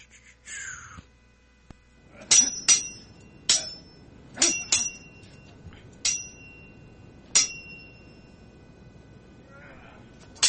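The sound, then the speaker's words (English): A sword-clashing sound effect: blades clash about eight times in irregular bursts, each a sharp metallic strike that rings briefly at a high pitch, with a faint murmur of background noise in between. “Where's my sword ratchetness sound effects?”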